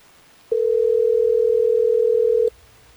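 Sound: phone call ringing out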